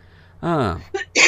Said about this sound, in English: But, Gesundheit.